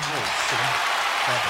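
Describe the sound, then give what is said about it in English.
A steady wash of crowd applause fills the whole clip, dense and bright, while a man's voice talks over the clapping. “You clapping what?”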